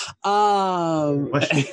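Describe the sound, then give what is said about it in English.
A single sneeze: a drawn-out, steady voiced "aah" that slides slightly lower in pitch, then a loud breathy, noisy burst to finish it. “Bless you.”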